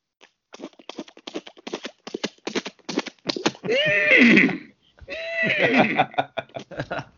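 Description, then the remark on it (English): A person vocally imitates a galloping horse, as if someone is riding it, with quick rhythmic clicking clip-clops, then lets out two loud, wavering whinnies broken by more hoofbeat sounds, clear. “And one of the things I would do with I'd voice the characters in as close as I could do it, and I would make the sounds, you know, like if it's somebody riding on a horse, I would go.”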